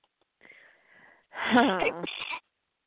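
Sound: sneeze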